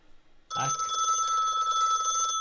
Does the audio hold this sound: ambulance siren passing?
no